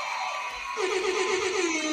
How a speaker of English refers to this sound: Those happy kids are screaming to get into the virtual strip club. I will never listen to that sound the same again.